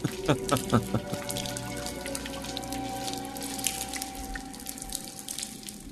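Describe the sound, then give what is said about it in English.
Vodka pours steadily with a wet, bubbling splash, a few sharper splashes at the start, then a continuous trickling flow that stays moderately loud throughout. “This isn't water, though. This is vodka.”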